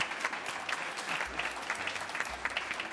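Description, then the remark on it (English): An audience at an Architecture Festival event applauds steadily, a dense crackle of many hands clapping at an even level for the whole stretch, with no voices heard over it. “Turn that hands up into a big round of applause.”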